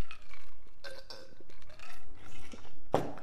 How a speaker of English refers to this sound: Let me have a quick sip.